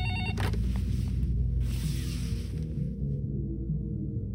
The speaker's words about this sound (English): I pick up the phone. If I don't, it'll get louder and louder until my ears start to bleed. And I'll still have to answer it.